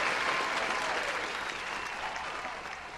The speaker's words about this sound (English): Ladies and gentlemen, closing out our show right here, y'all need to give a big round of applause for Brooklyn's own.